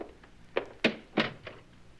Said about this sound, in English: And close the door